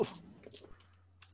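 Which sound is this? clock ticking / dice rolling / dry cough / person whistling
dice rolling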